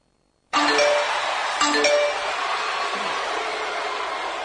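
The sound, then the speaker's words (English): A short electronic jingle, the show's email segment sounder, begins abruptly with bright chime-like tones, a second chiming accent about a second later, then a sustained shimmering wash that holds steady at a loud level with no voices. “So with that being said, Trey, let's go ahead and hit that email sounder.”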